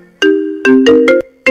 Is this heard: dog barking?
no